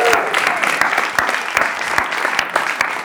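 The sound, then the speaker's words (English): A church audience applauds the preacher's father steadily, with many overlapping claps forming a dense, continuous roar that holds at an even loudness for the whole few seconds. “So, Dad, would you stand and can we just clap”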